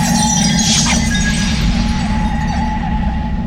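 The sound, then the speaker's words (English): A glass marble filled with an amber fluid is slammed onto rocky ground and shatters once with a sharp, bright crash early on, its tinkling fragments fading quickly over a steady, loud low rumble and faint sustained tones. “I quickly slam the marble upon the rocky grounds and it shatters.”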